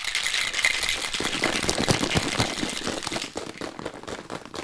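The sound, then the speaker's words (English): Ice rattles hard inside a red cocktail shaker with its lid on, in a steady, fast back-and-forth rhythm, bright clattering clicks continuing for several seconds without any talking. “You want to give that a quick shake. Oh, with wait, the ice. Wait. Let me put on my lid here.”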